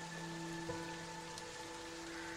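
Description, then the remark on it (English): Soft, steady rain hisses faintly throughout, a continuous patter with no breaks, layered over a low, sustained droning hum. “She has a very large dog who's just standing in the rain next to her.”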